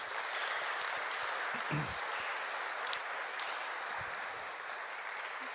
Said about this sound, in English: So let's give them a round of applause.